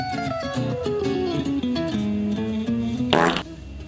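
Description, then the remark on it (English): A string of loud fart sound effects, played as stream sound alerts, plays back to back for several seconds, wet and buzzy, ending in a brief sputter. No one talks. “Everybody, just fart up real quick.”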